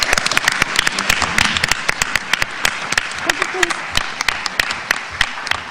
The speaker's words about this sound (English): let me just ask you to give us a warm round of applause